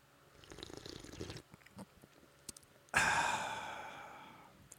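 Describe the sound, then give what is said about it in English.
A soft, drawn-out slurping sip of coffee (Tacta Squatch by Black Rifle) followed by a few small mouth clicks, then a loud, satisfied breathy sigh that slowly fades. No one speaks. “So I will pause for a few seconds and take a sip.”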